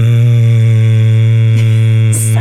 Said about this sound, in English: What did you do? We all decided to hum. Oh. The classic.